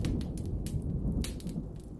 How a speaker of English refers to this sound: Oh, listen. Do you hear that? The thunder is just starting. What perfect timing for our story.